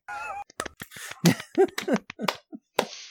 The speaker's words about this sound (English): Pity clap.